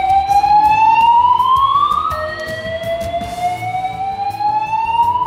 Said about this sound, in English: But we had, for the first time ever, an emergency alarm go off in the middle of the conference, in the middle of sessions.